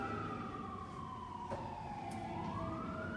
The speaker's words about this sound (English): So, we'll pause for the fire truck